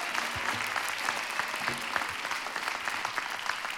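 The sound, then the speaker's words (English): An audience applauds steadily as a birthday clap offering, a dense wash of many hands clapping at a fairly loud, even level with no pause, plus faint scattered cheers mixed in. “Give him a big birthday greeting, a clap offering in this house, and a shout of praise.”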